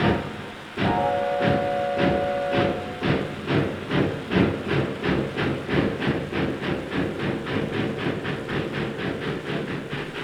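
A steam train bound for Blackpool pulls away from a station with a steady run of loud, rhythmic chuffs and hissing, and a whistle sounds briefly near the start. No one speaks.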